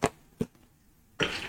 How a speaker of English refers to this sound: No, that's just my dice.